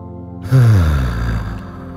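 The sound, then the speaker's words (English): A long, deep breath drawn in during a guided meditation, a steady airy rush lasting over a second, over a soft low tonal hum in the background. “Long, slow, deep breath in.”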